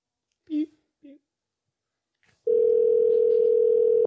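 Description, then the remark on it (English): A steady, loud telephone dial tone of a call being placed to a burner phone starts abruptly and drones on without a break, after a couple of short murmured vocal sounds and a faint click. “You're calling me on my dark phone.”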